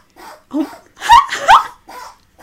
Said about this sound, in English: Is that sneezes? Yeah. It sounds like he's laughing. Gatsby, are you okay? Oh my god. That's what you call a sneeze attack. Bless you, Gatsby. He does sometimes just have these intense long sneeze.